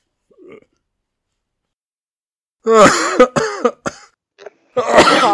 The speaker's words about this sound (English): cough, cough, cough.